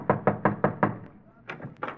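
Five firm, evenly spaced knocks on the door of a house, fairly loud, followed by a short pause and a few softer, indistinct sounds.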